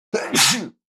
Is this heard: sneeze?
yes